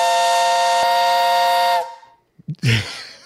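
A loud, steady steam-style whistle blows in one sustained blast for nearly two seconds as an introduction on Fox Sports Radio, then cuts off abruptly, followed by a short burst of a voice.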